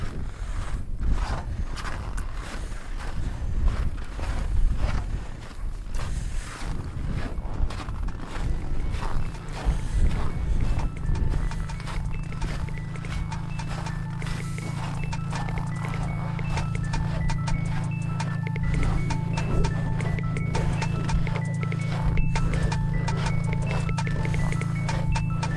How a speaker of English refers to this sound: That was the sound of boots crunching through the snow at the South Pole.